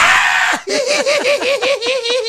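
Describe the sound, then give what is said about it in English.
A voice imitates a short, harsh frightened scream of someone in a haunted house, then breaks into rapid, rhythmic bursts of high-pitched laughter. Loud, with no other talking. “So it's screaming and it's laughter.”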